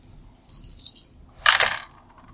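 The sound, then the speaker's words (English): Four dice rattle softly for a moment, then clatter sharply onto a hard table in one short burst that quickly settles, rolled for an attack in a tabletop game. No one speaks. “And now you get to roll 5 dice. Four dice.”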